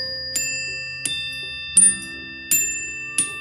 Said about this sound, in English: And whenever I have a good thought, I just come in and I ring the chimes. Oh, yeah, and it feels so good, and I let the vibration just...